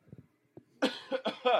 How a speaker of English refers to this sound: Hold on, I might sneeze. Hold on.